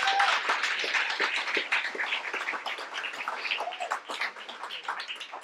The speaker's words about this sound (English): So another big round of applause for them, please.